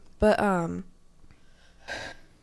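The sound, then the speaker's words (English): A loud, strained, voiced gasp with a falling pitch from a person having trouble breathing, then a brief pause and a second raspy, breathy intake of air, labored, with no speech. “I'm like having trouble breathing.”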